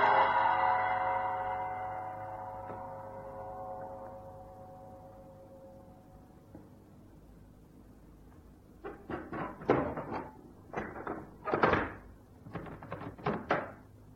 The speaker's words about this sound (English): walked up to the heavy iron door of the temple in Kossa Street and pulled on the silk rope that hung from the high rafters over the door. A gong sounded deep inside the building.